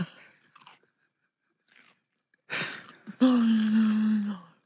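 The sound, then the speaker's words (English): Crunchy carrot chewing into a microphone: a few soft bites, then a loud burst of crunching, followed by a sustained voiced groan-like sound from the person eating. “You spat carrot all...”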